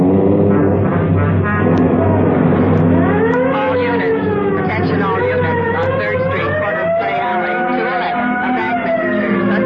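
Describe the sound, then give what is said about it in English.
A car engine revs and accelerates loudly, its low rumble constant while rising and falling whining tones sweep over it, like a siren wailing. “Come on, here's the garage. All right, come on, hit it. Let's make time.”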